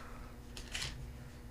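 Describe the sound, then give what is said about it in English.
Quiet, brief crinkles of paper being handled, a few short scratchy rustles over a low steady hum, with no voices. “Like that? Like the paper?”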